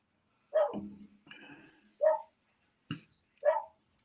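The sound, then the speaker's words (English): A dog named Boomer barks several times in short, spaced bursts, with a softer growling or whining sound between the first barks. The barks are fairly loud, with brief silences between them. “And we want to thank the dog for being on this week's edition of Fear That Was.”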